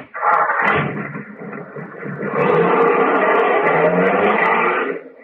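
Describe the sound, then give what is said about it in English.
A car engine runs loudly, a rough steady roar that surges higher partway through as the driver's foot goes down on the gas and the vehicle revs and pulls away. No voices are heard. “Oh, the car is doing it, too.”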